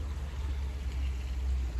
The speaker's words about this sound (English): How do you guys feel about the sound of the water? Is that too loud?